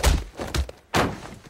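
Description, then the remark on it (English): A sharp elbow strike to the chin, heard as a few hard, dull thunks in quick succession, loud and punchy with no one talking. “A sharp elbow to the chin?”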